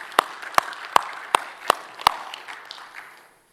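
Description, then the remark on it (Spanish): An audience breaks into applause for God during a sermon: six loud, evenly paced claps stand out over a bed of scattered clapping from many hands, which thins and fades away after about three seconds. “Denle un aplauso porque Él se lo merece.”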